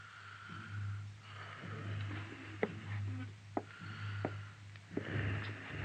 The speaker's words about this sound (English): The only sound in the room was the hoarse, slow breathing of the wounded man.